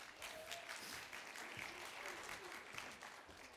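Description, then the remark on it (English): An audience claps steadily for an 8-year-old boy about to lift weights, a dense, even patter of many hands with no breaks, and faint voices murmur underneath the applause. “Everybody clap for Hudson.”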